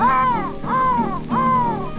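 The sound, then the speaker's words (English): Three drawn-out, harsh crow caws in a steady rhythm, each about half a second long with a brief pause between, loud with nothing else around them. “Saw the old crow and the old crow call.”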